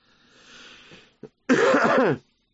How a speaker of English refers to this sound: Don't mind the cough, humans. Just getting over pneumonia.